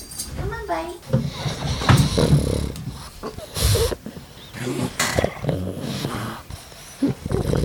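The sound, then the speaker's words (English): Dogs, among them Banjo, snort and snuffle into the microphone in loud, breathy bursts, with low grunts and growly rumbles between them and a person's voice murmuring in the background. “I'm going to go get the dogs off the bed and we'll bring them over and they'll snortle in the microphone.”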